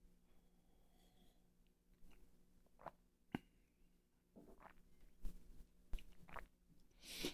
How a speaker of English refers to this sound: I'm just chilling, different set, looking at the beautiful sun outside, you know, drinking my coffee. Actually, speaking of coffee, let me take a sip.